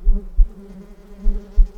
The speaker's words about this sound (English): All about the place where she lay was the thick buzzing of flies, and the black swarming of them.